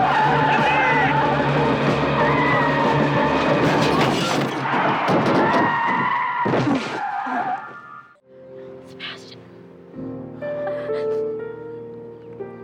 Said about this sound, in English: This guy gets hit by a fucking car. Yes! And it's going about 37 seconds.